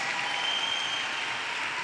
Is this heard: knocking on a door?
no